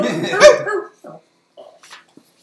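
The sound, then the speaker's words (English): A dog lets out a short, loud howl lasting under a second, followed by a few faint, brief yips and whimpers spaced out in near silence. “Is he howling now?”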